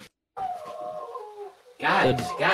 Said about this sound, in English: Who's dog? Sorry, the dogs are going.